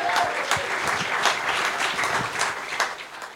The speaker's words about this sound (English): So thank you, guys. Give yourselves a fucking huge round of applause and everyone that helped.